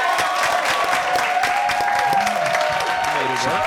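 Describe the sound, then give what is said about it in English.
A crowd applauds steadily, dense overlapping clapping filling the whole few seconds at a fairly loud, even level, with some cheering and voices mixed in. “Clap it one time,”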